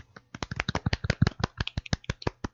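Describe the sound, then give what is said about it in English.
Soft, light hand clapping in a quick, steady patter of about twenty small claps over a couple of seconds, quiet and polite like a golf clap, with no voices. “It made you go, ah. Golf clap.”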